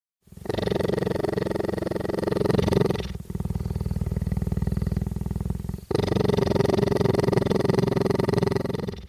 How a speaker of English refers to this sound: Because right on the front page, he's got an awesome video of himself petting and recording a purring cheetah with a microphone. Here's what it sounds like.